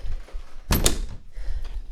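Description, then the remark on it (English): An office door at a food bank in Luton creaks open, a short rattling, clicking burst of the latch and hinge that lasts under half a second, with low background rumble before and after and no one talking. “I think she's in through this door, I've been told to come.”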